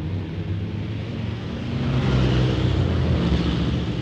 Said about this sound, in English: I don't know how people manage to ride bikes in all this traffic. It really is exciting. I'm going to turn left now, off of this main road, because it's very, very busy.